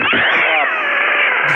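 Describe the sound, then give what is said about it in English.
A cat lets out one long, loud yowl, a drawn-out wailing cry that barely wavers before it cuts off. “Oh, the fucking cat's got in the bubble.”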